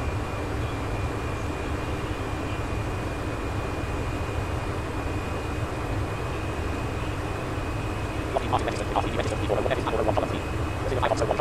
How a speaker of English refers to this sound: Wish I could get the engine to quit spooling like that or whatever.